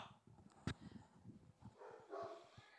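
Several dogs bark and yip in short bursts, one sharp loud bark standing out, with scattered whimpering yelps trailing off; no one speaks.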